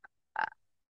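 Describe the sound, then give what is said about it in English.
A person imitates the creepy croak from the Ring movie: a tiny click, then one brief, raspy, guttural rattle from the throat, quiet, with nothing else around it. “Oh, it was barely a croak.”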